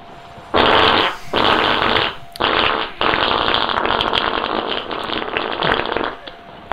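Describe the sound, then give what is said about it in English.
A long, loud, sputtering fart broken into several bursts, with brief pauses between them, then a sustained raspy stretch that trails off. No one talks during it. “That's my favourite fart, but yeah, I don't like all the white noise.”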